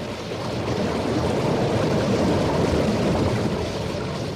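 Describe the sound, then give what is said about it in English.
A small steam boat engine runs steadily on a river, a constant rumbling churn blended with rushing water noise, holding even throughout with no voices. “Stop the engine. Stop it. Let's drift.”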